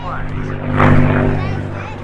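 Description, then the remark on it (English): A P-51 Mustang, an American-made, long-range, single-seat World War II fighter built by North American Aviation, at the Memphis Air Show: its piston engine drones steadily with a deep, throbbing hum, swelling louder around the middle as it seems to pass by, then easing slightly, with outdoor crowd noise underneath. “We're at the Memphis Air Show, and you're listening to the sound of the P-51 Mustang.”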